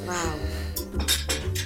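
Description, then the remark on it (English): A few sharp clinks and clatters of dishes from someone doing the washing up sound in the background, spaced irregularly, while a person talks over them at a closer level. “Because I can hear someone's doing washing up in the background for one of you.”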